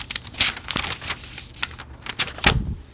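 rustling paper

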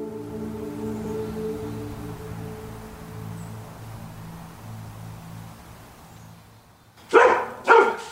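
dog barking

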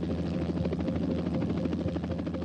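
helicopter hovering overhead

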